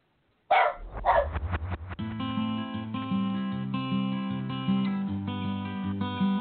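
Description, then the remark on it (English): A dog, Prescott, a 10-year-old pet, barks twice in quick succession, loud, then a steady melodic music track with sustained notes and a bass line takes over and plays on. “He's 10 years old, and I still refer to him as a puppy because he's my only child, my dog.”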